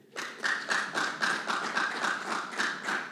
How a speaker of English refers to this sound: Only two people stood up. Can you clap for them?